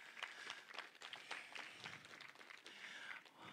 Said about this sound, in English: Come on, somebody ought to just give the Lord a hand clap of praise.